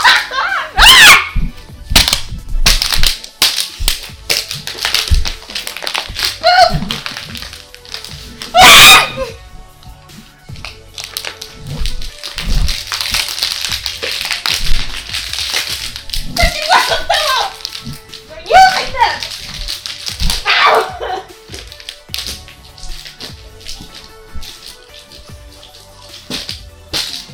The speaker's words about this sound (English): So all of the noise that you're hearing in the background is that they're actually hitting each other with a singular water bottle. I don't understand what's happening right now.